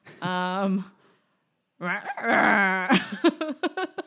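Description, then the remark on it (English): A voice mimics a crying baby in an attempt at a German-style cry, with a long wavering wail, a brief pause, then a strained sobbing cry that breaks into short choppy gasps. “I was thinking of Wilkoman in my head, but trying to make it as a crying noise.”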